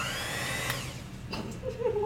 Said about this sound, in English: What was that? That was my electric mixer. Oh shit, I need to get a I was just revving it up for you. I was trying to give some sound effects.